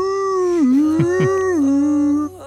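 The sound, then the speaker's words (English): A loud coyote-like howl holds one long wavering note, dipping and rising in pitch, with two brief sharp yelps breaking in partway through before it cuts off. “All the fucking coyotes in the world love this song.”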